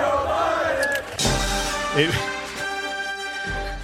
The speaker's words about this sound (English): And the whole crowd went nuts. And they said, pussy, pussy, pussy. Everybody stood. Yeah, they started cheering.